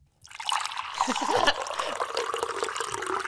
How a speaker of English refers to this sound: Isn't there a button for tea? Hold on, guys. Hold on. We reprogrammed the soundboard. I'm like, where did it go? Hold on. Here we go. Please stand by. Please stand by while we pour the tea.